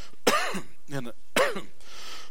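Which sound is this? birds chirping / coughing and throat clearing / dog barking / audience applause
coughing and throat clearing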